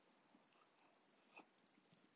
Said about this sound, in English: Now I'm going to take a quick sip of my cup of joe, because I love a good cup of joe.